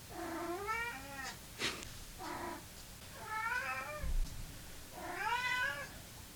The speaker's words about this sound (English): It is actually Callie's dinner time. So that's not even, like, induced meowing from her. That's genuine. She can wait a little longer, though.